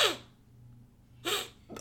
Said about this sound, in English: Singular sniff.